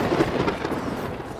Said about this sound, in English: All that goofy gloop formed Lake Fizzy in the giant cavern, and then something mysterious happened. Underground lightning struck.